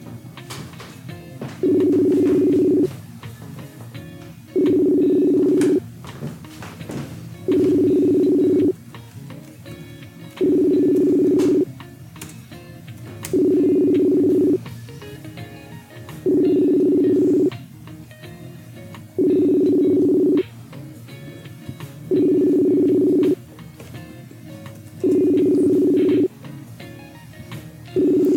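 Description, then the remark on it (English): An outgoing Facebook call made around 2 a.m. rings: a steady electronic ringback tone pulses about ten times, each roughly a second long and spaced evenly about three seconds apart, over a quiet background. “I'm spending right now on these like 2 a.m. fucking Facebook calls.”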